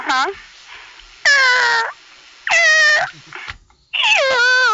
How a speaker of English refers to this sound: Is that the chicken? That's the chicken. It wants food. Sounds like it needs to be oiled, I don't know. Squeaky.